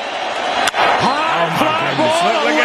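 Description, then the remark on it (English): A single sharp, loud crack of a baseball bat striking the ball for a home run hit over the train tracks and out of the stadium in Houston, with the roof open, followed by a rising stadium crowd roar and excited voices. “Because I want you to hear the pop.”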